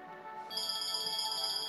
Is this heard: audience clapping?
no